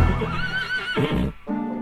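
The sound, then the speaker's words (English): A frisky steed named Dr. Death neighs loudly, a shrill, wavering whinny that rises and falls over about a second before breaking into shorter snorting bursts. “And I could see the eyes of this cowboy, and he was thinking, oh, he wants a frisky steed, does he?”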